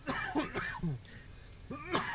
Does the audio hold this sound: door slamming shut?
no